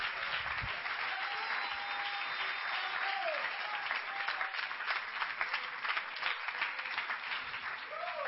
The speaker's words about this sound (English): Somebody clap your hands and praise God.